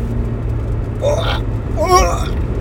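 Two short, strained retching heaves from a person, the second slightly louder, over the steady low rumble of a moving car on the road toward Buffalo, New York.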